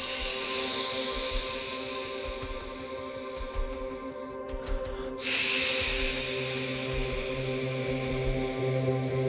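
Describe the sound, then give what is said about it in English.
A person imitates a snake with a long, breathy hiss. It cuts out briefly midway, then returns louder and carries on to the end. “I'm a snake, I go.”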